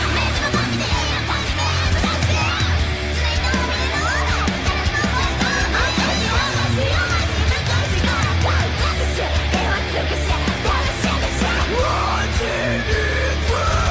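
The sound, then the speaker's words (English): A loud, dense thrash punk metal song plays nonstop, with harsh screamed vocals over a wall of distorted, driving instrumentation that never lets up. “I honestly think that was a thrash punk rock metal song about sweet snacks, sweet treats.”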